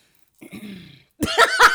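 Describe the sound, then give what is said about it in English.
Someone clears their throat: a low, gravelly rumble, then a short pause and a few harsh, raspy bursts. No one speaks. “I had to clear your throat.”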